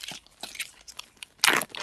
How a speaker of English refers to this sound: You're rustling a bag of chips. No, that is me zipping a Ziploc bag.